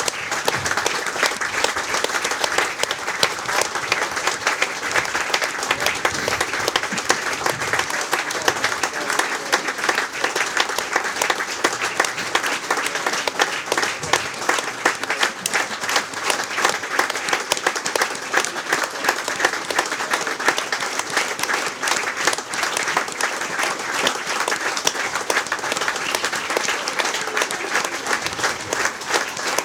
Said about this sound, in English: Our thoughts go out to the family and friends of Arthur and Martin at the Sky, and we thank you for joining them in a minute's applause to remember them both.